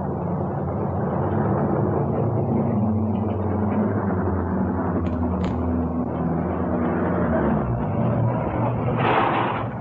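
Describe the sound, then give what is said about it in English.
A steady low engine rumble drones continuously, like a car interior while driving, with a brief brighter whoosh near the end. “There's no need to get out of the car, darling.”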